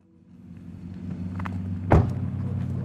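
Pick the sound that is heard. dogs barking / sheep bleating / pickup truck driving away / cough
pickup truck driving away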